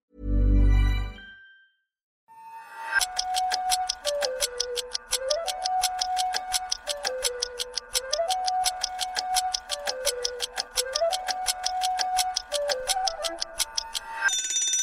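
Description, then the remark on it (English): A steady, fast ticking pulse runs throughout, layered with a repeating electronic tone pattern, like a countdown timer cue, loud and upfront after a brief low thump at the start. No one speaks. “Minutes on the timer.”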